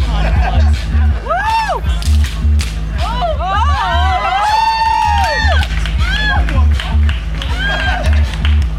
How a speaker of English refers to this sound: The parade also featured dance performances, such as one by the group Dynamic Badgerettes. Their quick maneuvers drew cheers from the crowd.